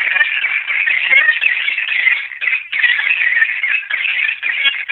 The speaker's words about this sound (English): And then I'll let those two howl, then I go into, let me see if I can find, here's platinum gray fox pup distress. It's one of my favorite sounds.